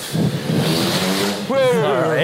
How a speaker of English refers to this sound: We're in Homerton, and that was some mean motorbike action. He's giving you the final the final farewell.